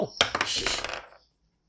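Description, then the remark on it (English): A quick clatter of dice tumbling across a hard tabletop, a rapid run of sharp clicks and rattles that slows and settles on a 5 after about a second, fairly loud, with no talking. “I'm gonna stop using this dice. That's a 5.”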